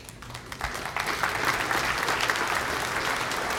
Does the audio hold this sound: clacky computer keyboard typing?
no